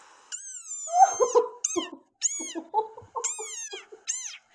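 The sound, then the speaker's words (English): A rain frog's loud, shrill squeaking calls, several high-pitched, wavering cries in quick succession, sounding almost like a mewing kitten, with no voices. “That is a rain frog.”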